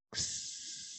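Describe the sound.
A person makes a sustained hissing sound with their mouth, imitating a snake, loud, starting abruptly and holding steadily for nearly a second without any speech.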